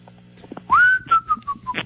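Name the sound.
person whistling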